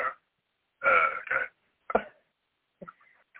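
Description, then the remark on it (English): A person imitates a big dog's bark with a few short, gruff vocal bursts, two loud ones up front, then a sharp yelp and some quieter trailing sounds. “I like my big dog. They just kind of go,”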